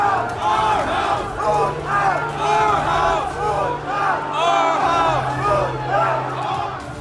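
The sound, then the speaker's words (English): A large, angry crowd at the U.S. Capitol screams and chants together as lawmakers hide during the certification of the electoral vote, a dense continuous roar of many voices with rising and falling shouts and a low steady hum underneath, loud throughout. “As lawmakers were meant to certify the electoral vote of our country, they were forced to hide from a crowd screaming and chanting.”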